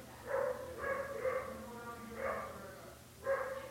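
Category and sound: animal, neighbor's dogs barking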